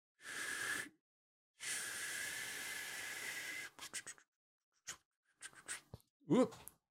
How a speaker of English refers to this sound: I've never seen an electric steam mop before. Never seen an electric steam mop? No. Okay, well, go over to the tap now, put some water in it.